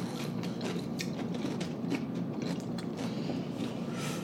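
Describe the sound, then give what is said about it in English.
Someone bites into and chews a bagel with cream cheese and everything but the bagel seasoning, a steady run of soft, crackly mouth clicks and squelches repeating for several seconds, with no talking over it. “I'm perfectly fine just eating it like this.”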